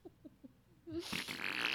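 Three short, soft, low puffs come first, then a loud, raspy fart blasts out and sputters on for nearly a second, clear, with no talking.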